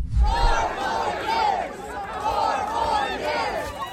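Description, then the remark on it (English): A large crowd at the Iowa fair chants in unison outdoors as it welcomes Donald Trump, a loud rhythmic phrase repeated over and over, with cheering and general crowd noise filling the background throughout. “Meanwhile, Trump shows up to the Iowa fair and is warmly welcomed by the crowd.”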